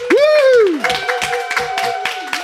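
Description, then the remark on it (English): A live crowd claps and cheers, opening with a loud rising whoop over scattered, fast handclaps that keep going with a steady sustained tone underneath. “So give yourselves a round of applause, folks in the crowd.”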